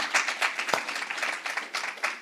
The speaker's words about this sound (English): Yeah, come on, one clap. Let's do it.